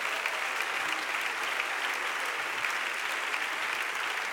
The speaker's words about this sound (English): Somebody clap your hands right now if you believe it.